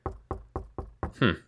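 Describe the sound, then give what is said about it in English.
Someone raps on an apartment door five times in a quick, steady rhythm, fairly loud, with the final knock landing heavier and ringing out a little longer. “Then I decided to stop by the apartment. No luck there. No one's answering the door.”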